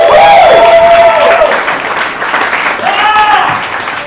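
Loud audience applause welcoming the next performer to the stage, a dense wash of steady clapping lasting about four seconds, with a couple of high, drawn-out cheers or whoops rising over it.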